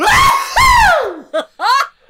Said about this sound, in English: And that's my sneeze. That's terrible. Basic.